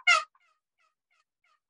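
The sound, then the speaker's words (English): A single sharp, loud turkey cut from a turkey call, one short abrupt yelp followed by faint lingering echoes and then quiet, with no talking. “Well, a cluck is a more, or a cut is a more aggressive sound. Very aggressive.”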